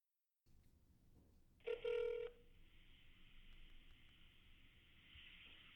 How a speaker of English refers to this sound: Now that I have DreamWorks Animation's phone number, let's call them and see if they'll make my Shrek spec.